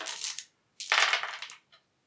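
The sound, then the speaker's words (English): Dice clatter and tumble across a table in two quick bursts, a short rattle then a longer rolling skitter, ending with a faint final click. Fairly loud, with no talking. “Oh, bloody hell, this dice in today's been crap.”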